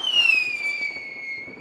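A firework sound effect: a shrill whistling tone that slides slowly downward over a steady hiss and faint crackle, loud, with no voices.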